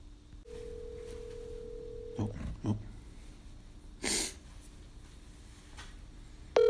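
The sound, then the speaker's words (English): A phone call rings through a speakerphone: one steady, moderately loud ringback tone lasting under two seconds, followed by clicks, handling noises and a brief breathy burst. “You know he can hear his phone ringing.”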